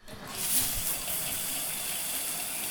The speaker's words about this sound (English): The bathroom is one of the few places where you can get a little privacy, right? Standing under that spray of water behind the shower curtain, even more.